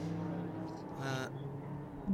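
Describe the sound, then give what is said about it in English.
A Ginetta LMP3 prototype race car, driven by Max Ashoff, accelerates back up to speed after a green flag, its harmonic roar building to a brief, louder whine midway before settling back into a steady drone over a couple of seconds. “So off we go again, and Max Ashoff gets the Ginetta back up to speed.”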